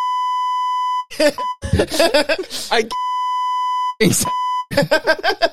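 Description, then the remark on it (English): Long, steady censor bleeps from a button, a flat electronic tone, repeatedly cut in to silence a man's speech, with talking resuming in between and a couple of shorter bleeps clipped in. “I love how you both went for the button to silence him.”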